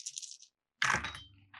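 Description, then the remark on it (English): Five dice, rolled for resolve and composure, rattle briefly in a cup or hand, pause, then clatter sharply onto a hard surface and skitter to a stop, fairly loud with no voices. “So it's 5 dice.”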